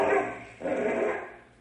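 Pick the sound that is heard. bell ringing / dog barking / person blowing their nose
dog barking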